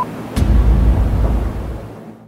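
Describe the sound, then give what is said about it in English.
A single sharp gunshot cracks out during the siege at Waco, with about 75 men around a building shooting at it, followed by a heavy, booming low rumble that lingers for about a second before fading. It sounds loud and muffled, with no voices. “I hear gunfire.”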